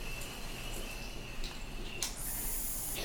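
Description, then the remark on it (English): A water pipe bubbling in a steady, hissy gurgle that runs unbroken for about three seconds, with a sharper airy hiss rising near the end. No one speaks. “They're just hearing bubbles.”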